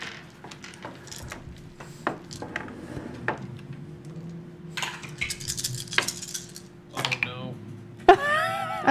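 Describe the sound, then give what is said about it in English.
A flurry of dice clattering and rattling across a tabletop in repeated bursts as players roll initiative in a tabletop game, with people talking underneath and a brief voiced exclamation at the end. “There's way too the many one dice die.”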